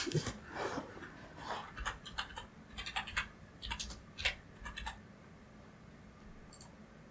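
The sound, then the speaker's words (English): Rapid, irregular clatter of keys on a computer keyboard typing into Google, a flurry of clicks and taps for several seconds that thins out near the end, with no one speaking. “Have to be faster typing.”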